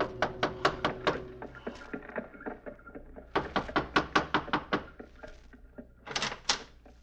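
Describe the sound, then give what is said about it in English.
Several rounds of sharp knocks rap on a wooden door in a more or less fashionable part of town, each burst a quick run of firm raps separated by short pauses, with a soft low hum underneath and no talking. “Gave the driver his fare, received a wink in return, and knocked on a door.”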